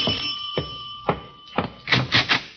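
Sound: doorbell ringing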